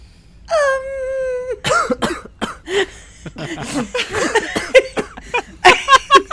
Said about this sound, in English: That was a very well timed cough, and I'm not going to change that.